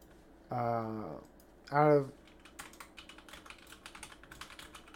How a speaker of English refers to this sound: I just fucking hate typing.